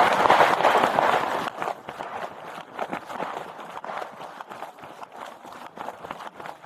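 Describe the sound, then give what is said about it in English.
A loud, dense burst of gunshots opens, then gives way to police officers running toward the scene of the shooting at a homeless encampment in the woods, their quick footsteps thudding in an uneven rhythm with faint voices mixed in. “Those were gunshots and the sound of police officers running toward the scene of the shooting.”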